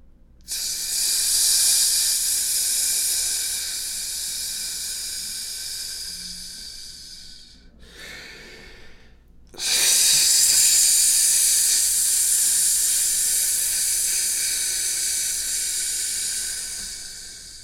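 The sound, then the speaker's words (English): A voice makes a long, loud hissing sound as part of a ritual invocation after a spoken prayer, pauses briefly, then hisses again just as long, two steady breathy hisses with no speech. “And after you have said the second prayer, where there is silence, silence, and the accompanying words, make a hissing sound twice.”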